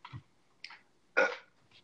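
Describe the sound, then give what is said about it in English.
A short burp after taking a big drink of water, with a few small gulping, throaty bursts around it, the main belch a brief resonant rumble near the middle. Fairly quiet and slightly muffled, with no talking. “I just took a big drink of water and have to burp.”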